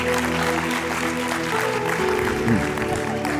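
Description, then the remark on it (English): A crowd at a sermon applauds steadily for the preacher's wife, dense clapping that stays loud throughout, with some sustained tones and cheering voices mixed in beneath it. “Give a round of applause for my absolutely stunning, beautiful.”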